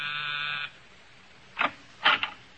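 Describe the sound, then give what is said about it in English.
A harsh, steady doorbell buzz at apartment 2120 rings for about half a second and cuts off, followed by a pause and a few short, rasping bursts. “Ring a bell and say hello to the American girlfriend.”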